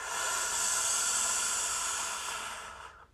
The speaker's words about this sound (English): So we go inhale. Hold it at the top and exhale through the nose.